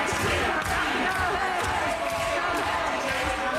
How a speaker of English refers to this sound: the crowd of chanting protesters took over the stage